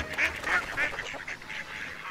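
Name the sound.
duck quacking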